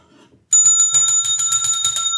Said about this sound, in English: That's the bell ringing.